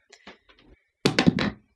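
Dice are rolled across a hard surface for a finale roll-off: a few light, scattered clicks, then a louder burst of clattering knocks that quickly settles into silence.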